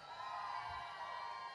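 An audience cheers and whoops together, a dense, steady roar of many voices that holds for the whole short stretch without breaking.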